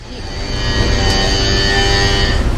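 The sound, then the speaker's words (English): A calf at Billings Farm gives one long, steady moo lasting a couple of seconds, loud and even in tone, over a low rumbling background. “But we did get one calf to moo when we visited Billings Farm.”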